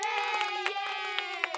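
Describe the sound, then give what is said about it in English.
A soundboard button plays a sound effect of children cheering: a short burst of high-pitched cheering, a steady bright wash of many young voices with a few sharper shouts poking out, loud and sustained throughout. “My favorite little children cheering button.”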